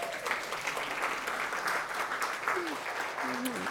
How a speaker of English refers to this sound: Y'all, look what God has done. And you can applaud God for that.